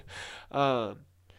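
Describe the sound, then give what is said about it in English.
A dramatic sniffle: a breathy, hissing inhale followed by a louder voiced exhale that slides downward in pitch, then a faint brief sniff after a short pause. “That was a dramatic sniffle, so I hope that added to the tone of what I'm about to talk about.”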